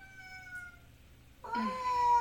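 A female cat lets out a loud, drawn-out meow, rising in over a faint steady tone and lasting nearly a second with strong harmonics.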